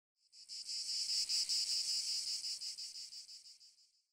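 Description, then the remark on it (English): A cicada's shrill, buzzing song pulses rapidly and steadily for about four seconds, loud, swelling in quickly and fading out gradually at the end, with no voices. “You ever heard of cicada before?”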